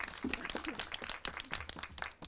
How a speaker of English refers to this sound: Can we give them a clap, please, ladies and gentlemen? Well done.